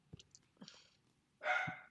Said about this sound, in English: I like the singular last bark that dogs do. Woof. God. She always has to have the last fucking word.